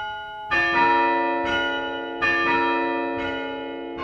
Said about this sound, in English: This is the chime at St. Mark's Episcopal Church in Evanston. It's more than 100 years old, and it's one of only two active chimes in the area. The bells are played from the first floor with a chime stand.